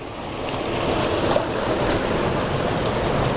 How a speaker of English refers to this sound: I can't believe at this waterfall, with the water running as fast as it is, there's so many sharp rocks.